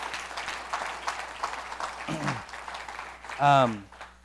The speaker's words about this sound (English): And so could we just give Jesus a round of applause for being amazing and being awesome?